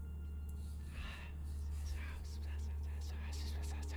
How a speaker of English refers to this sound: Some whispering as you get close to the door frame.